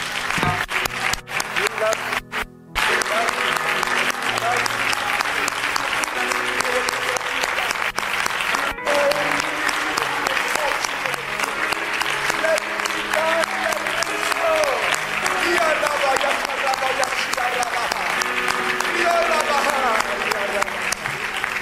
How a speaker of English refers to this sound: And if you believe that prayer, I want you to clap your hands unto the Lord as loud as you can.